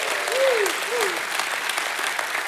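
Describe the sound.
Steady crowd applause, a hand clap given to God, fills the whole stretch, with two rising-and-falling voiced shouts of praise breaking out over the clapping near the start.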